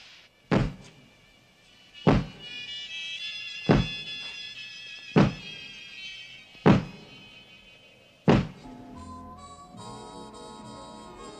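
Six heavy, booming knocks on a front door, evenly spaced about a second and a half apart, over a tense, sustained musical drone with no talking.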